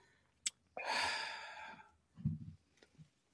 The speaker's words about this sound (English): That breath was deep. That wasn't a word. That was a real, that was an exalted level of breathing. That was a church pastor's breath you just took.